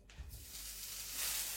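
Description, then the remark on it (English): A good-sized knob of butter, about 30 grams, sizzling steadily in a hot pan as its water boils away before livers are added; a soft continuous crackling hiss that swells slightly toward the end, with no talking. “Now what you're waiting for here is for the butter to stop sizzling.”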